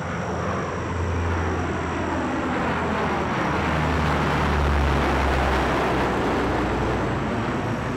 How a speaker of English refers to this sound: These were big aircraft, 80-foot-long, four-engine Hercules military planes, which had to land without being seen.